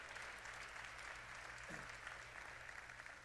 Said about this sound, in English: Can we give a real big clap to all our moms this morning?